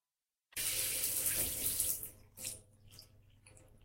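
A hotel shower: water bursts on abruptly after a short silence, a loud, steady rushing hiss that weakens after a couple of seconds into uneven splashing and trickling. No one speaks.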